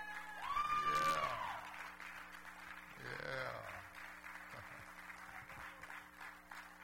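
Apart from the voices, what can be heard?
audience clapping hands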